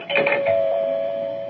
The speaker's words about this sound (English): Oh, there's the doorbell